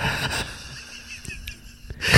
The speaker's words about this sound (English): Like you're breathing heavy?